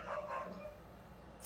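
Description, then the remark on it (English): A dog barks in a quick burst of two or three yaps near the start, then the sound trails off into quiet background noise. The barking is fairly faint. “Even the dog's excited. Perfect timing with the dog, yeah.”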